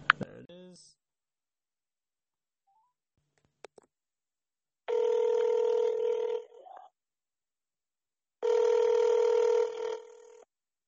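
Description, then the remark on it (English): A few button clicks, then two long steady ringback tones over a speakerphone as a call is placed to two friends, separated by a short silence, fairly loud. “So here we go, let's call them up.”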